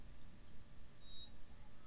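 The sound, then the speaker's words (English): A heart monitor in a medical facility steadily gives two thin, high-pitched electronic beeps about a second apart over a low, steady background hum. Quiet overall, with no voices. “My right ear twitched, and I instinctively turned towards the sound of the heart monitor, steadily beeping away, and telling everyone that somehow, for some reason only a divine being could answer, I'd survived.”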